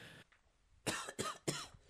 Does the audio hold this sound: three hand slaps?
no